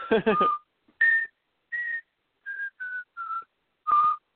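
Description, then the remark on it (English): A person whistles a short, catchy jingle melody from a commercial in clear, separate notes, with a brief burst of voice at the start. “That fucking song just gets stuck in your head, though. You'll be whistling it.”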